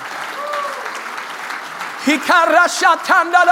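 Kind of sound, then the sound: crowd, audience applauding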